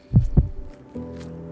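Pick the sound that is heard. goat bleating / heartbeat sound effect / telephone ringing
heartbeat sound effect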